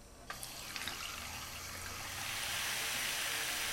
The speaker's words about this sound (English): And now I'm going to cover this with water.